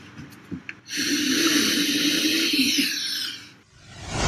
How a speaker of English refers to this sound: cause he recorded himself while snorting the white substance, three lines to be exact, and talking to a woman. And this is a little bit of the sound.